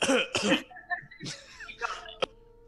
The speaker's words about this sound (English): Are we still coughing? You are.